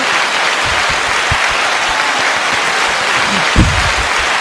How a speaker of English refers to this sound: We need that clap sound. Yay!